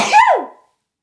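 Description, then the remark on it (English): A single loud sneeze from a girl: a sharp breathy burst that trails off into a short falling voiced tail, then silence. “She actually sneezed.”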